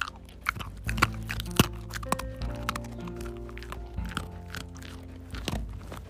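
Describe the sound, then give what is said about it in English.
A dog, Toki, crunches a little peanut butter cookie in a quick run of sharp, irregular bites and chews that keeps going for several seconds, with a faint steady hum behind it and no talking. “Now that you heard Toki eat a little peanut butter cookie”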